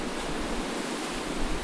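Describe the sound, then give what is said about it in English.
A steady, full wash of ocean surf, a broad hissing roar that holds even and fairly loud for its short length, with no voices. “This is the actual sound of an ocean.”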